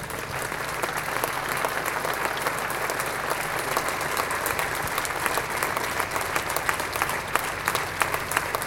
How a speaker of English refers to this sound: Please, will you give a round of applause to the award-winning sculptor